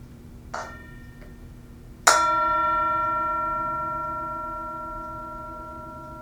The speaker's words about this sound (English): And as always on The Mindful Storyteller, we have the singing bowl, the Tibetan singing bowl, and it provides us with an invitation to enjoy the sound of the bell mindfully in this present moment.